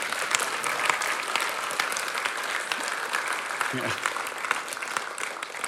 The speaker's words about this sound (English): You know what? We have to clap. That is just too good.